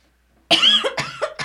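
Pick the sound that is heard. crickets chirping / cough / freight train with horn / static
cough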